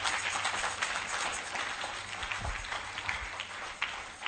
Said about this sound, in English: Oh, you can clap your hands, people.